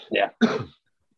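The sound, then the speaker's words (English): A stifled cough, two short muffled bursts in quick succession, held back rather than let out fully, with no talking around it. “Why choke back this cough and don't cough into the microphone?”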